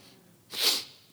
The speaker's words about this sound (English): Sorry about sniffing. I got crying. I apologize. You forgive me? I wish I had some tissue.